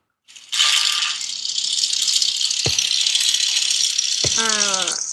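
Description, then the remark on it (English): An orc hunter character's mechanohog mount's engine clatters with a loud, steady rattling drone, broken by two sharp clanks and, near the end, a short stack of warbling, whining tones. “A mechanohog!”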